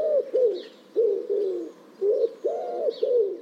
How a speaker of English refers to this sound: Now let's contrast those with a couple of easier ones, the wood pigeon and the gentle collared dove. The wood pigeon's deep and lowing song is heard almost everywhere.